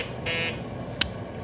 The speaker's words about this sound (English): Hey, emergency signal on the state radio. I'll get it.